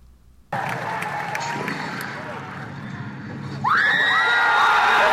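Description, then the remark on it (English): A packed movie theater audience erupts into loud cheering and screaming as the scene fades up on Han and Chewie in the corridor of the Falcon, a dense roar that surges even louder partway through as high, shrill shrieks pierce above the crowd. “That quiet moment of Harrison Ford saying Chewie, and then a beat, and then the absolute utter madness and screaming you hear is the fade up where you see Han and Chewie in the corridor of the Falcon”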